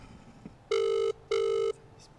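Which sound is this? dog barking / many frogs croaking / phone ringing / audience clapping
phone ringing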